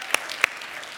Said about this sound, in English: Can we give a round of applause to all of our first-time guests today for coming out today?